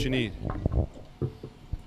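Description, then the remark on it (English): Whiskey poured into a glass in a few short gurgling, splashing bursts. A brief murmur of voice comes at the start. “I will let you pour what you need.”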